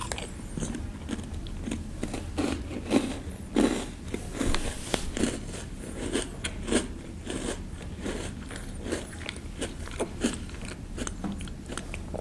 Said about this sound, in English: Sorry, guys, I had to go grab some Oreos because I am starving. So, we gotta. This audio commentary has become a little bit of an audio mukbang, a little bit, you know, so apologize if you hear any excessive chewing and, yeah.